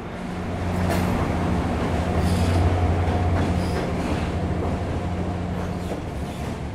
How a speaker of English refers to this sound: Just coming into the station at this moment is a Virginia Railway Express.